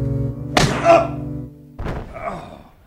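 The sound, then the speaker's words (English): A heavy, dull blow struck from behind lands with a solid thunk, followed about a second later by a second, softer thud, over a low droning hum. “Hit from behind.”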